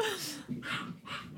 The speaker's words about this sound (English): oh dear, dogs are murdering each other out there.